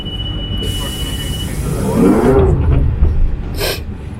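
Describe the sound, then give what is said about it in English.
A London Underground Central line train at Oxford Circus rumbles loudly with a constant low roar, a rising metallic squeal midway, and a brief hissing burst near the end; no one speaks. “We're in the central line at Oxford Circus.”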